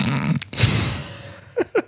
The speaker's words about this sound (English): She's having a coughing attack. I blame the weather.